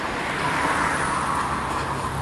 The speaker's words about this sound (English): Have a look at Mr. Bean car.